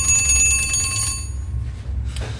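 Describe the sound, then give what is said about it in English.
An old clock's early alarm mechanism, set by a disc at the front of the dial behind the hands, rings its bell loudly and continuously for about a second, then stops and its metallic tone fades away over a low background rumble. “Not enough to waken the dead, but certainly enough to get you up in the morning.”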